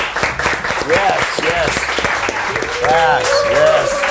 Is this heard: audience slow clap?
yes